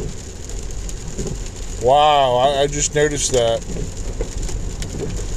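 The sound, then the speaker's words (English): Heavy rain drums steadily on a car roof at night, a dense, hissing patter that runs throughout, with a man's voice briefly talking over it in the middle. “Like I said, I'm going to need a boat to...”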